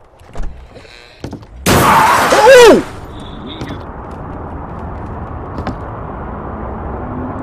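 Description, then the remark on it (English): A car crash: a sudden loud burst of screeching, crunching noise lasting about a second, preceded by a few faint clicks and followed by a low, steady rumble. “He got in a car accident with his girlfriend or wife.”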